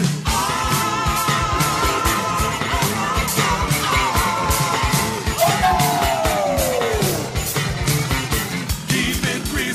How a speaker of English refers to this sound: Here come that crazy screaming sound.